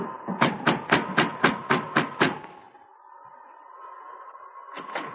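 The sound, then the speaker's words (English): Eight quick, evenly spaced knocks rap on a wooden cabin door, sharp and fairly loud, then give way to a low steady hum before a single further thud at the end. “Joe Finley went directly to the cabin where Sergeant Preston was staying and knocked on the door.”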